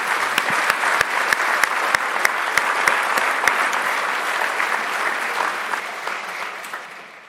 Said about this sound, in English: I think we've reached the conclusion time-wise, so I want to give a big round of applause to our panelists, and thank you.